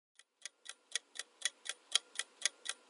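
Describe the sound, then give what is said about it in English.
A clock ticks steadily, about four crisp ticks per second, introducing the AFS on the Clock update segment, starting faint and quickly growing louder, with no voices over it. “And now it's time for AFS on the Clock, updates in 60 seconds or less.”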